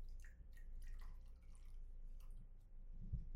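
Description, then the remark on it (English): A small shot of liquor poured into a glass: a brief trickle broken into quick drips and gurgles, fairly quiet, with no one speaking. “Man, you pour such baby shots.”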